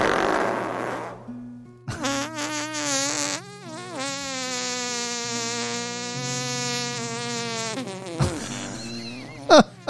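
A long, loud, buzzy fart rattles on for several seconds, its pitch wobbling and sputtering, with a couple of shorter squeaky bursts around it and no talking.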